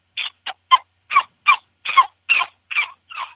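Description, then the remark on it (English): A prairie dog distress call: nine harsh, raspy barks repeated at a steady, slightly quickening pace, loud, with no other sounds around them. “This is prairie dog distress.”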